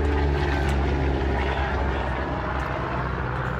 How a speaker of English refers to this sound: There's the helicopter now.